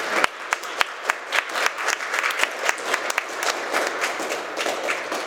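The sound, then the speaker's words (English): A crowd breaks into a round of applause on Easter, giving themselves a hand for getting through Lent: dense overlapping claps with a few sharper individual ones standing out, steady and fairly loud for several seconds with no talking. “Yeah, you can give yourselves a round of applause.”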